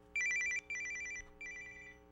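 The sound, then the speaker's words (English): A phone rings with a bright, warbling electronic trill in three quick bursts, fairly loud, with no one speaking over it. “Is that your phone?”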